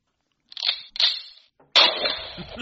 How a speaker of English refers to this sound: Have a gunshot.